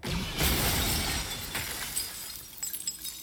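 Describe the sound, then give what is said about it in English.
Tempered glass shatters loudly in a video game in a burst of crashing, then a spray of tinkling shards and small clinks trails off over the next few seconds, without any voices. “Oh, they use tempered glass of the Empire.”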